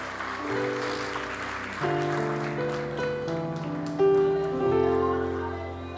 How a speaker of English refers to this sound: And the church says, if you receive the teaching, can you give the Lord a hand clap?